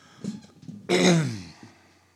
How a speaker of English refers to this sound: Clear my throat first.